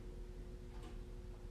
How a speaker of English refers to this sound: And begin to listen to the space that we're in. Maybe you'll hear the clocks ticking.